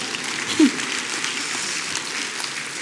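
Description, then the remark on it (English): An audience claps in a steady, dense wash of applause that holds at an even level for the full few seconds without building or fading. “And 5 weeks later, you can clap, thank you.”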